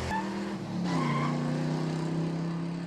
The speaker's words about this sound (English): Let's rev up our engines and pull onto the Harland Highway.